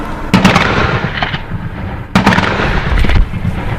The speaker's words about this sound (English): the army practiced military drills on the coast with live rounds that rang out across the island.